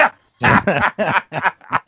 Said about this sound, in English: So anytime one just shut up or just shut them, the dog's making too much noise.